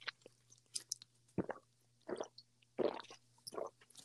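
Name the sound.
chewing gum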